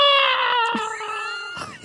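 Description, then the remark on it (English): A voice imitates a beheading scream as a radio-style sound effect for a vampire being beheaded: a loud, sustained high-pitched shriek with strong harmonics, wavering briefly before dropping off after under two seconds. “That's the sound that people make when they get beheaded.”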